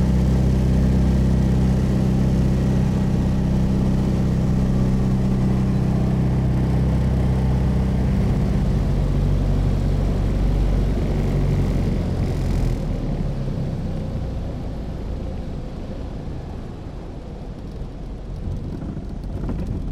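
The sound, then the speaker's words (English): A loud, steady drone of a vintage Fox Moth biplane's piston engine and propeller during a passenger ride, with a deep throbbing hum and rushing noise, easing slightly lower partway through. No one speaks. “you've just had your ride in the fox moth.”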